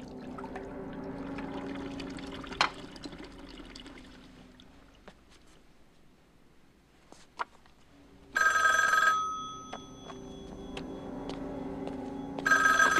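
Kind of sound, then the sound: household object, telephone ringing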